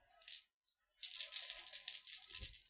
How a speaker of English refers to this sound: And now we roll our dice.